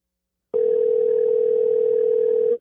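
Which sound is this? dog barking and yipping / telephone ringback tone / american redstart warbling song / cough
telephone ringback tone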